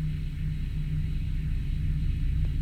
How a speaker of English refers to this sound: The most common description of the hum is of a sound of a diesel engine idling in the distance. It has only been recorded once, and that recording has to be amplified in order for it to become audible to the average person.